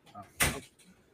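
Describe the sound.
A door shuts once with a solid thud that rings briefly before fading, with faint murmuring voices in the background before and after.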